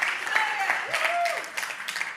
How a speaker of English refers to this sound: All right, three of you clapped. So good.